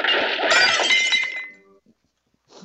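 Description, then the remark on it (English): A loud crash of dishes swept off a table and smashing in a movie scene, as Jack clears the table: a dense clatter of breaking crockery and glass with bright ringing tones, fading over about a second, then a brief faint rattle. “And he clears the table.”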